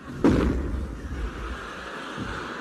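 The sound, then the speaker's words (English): A cannon fires a single shell with a loud boom that rolls into a long low rumble, with a fainter thud following a couple of seconds later. “And now we come to lot three, one cannon shell.”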